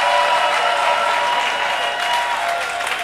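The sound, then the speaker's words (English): A church audience gives the Lord a shout and a clap offering, clapping and cheering in a dense, steady roar of applause that stays loud for the whole three seconds, with shouting blended into the clapping and no single voice standing out. “And give the Lord a shout and a clap offering.”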